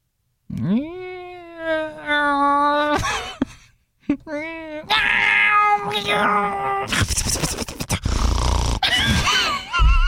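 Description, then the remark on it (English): A person loudly imitates a panicked cat that just fell in the bathtub, letting out long, wavering yowls that rise and strain, then break into harsh, raspy growling cries near the end, continuous. “Like, this is a cat that's, like, just fell in the bathtub, okay?”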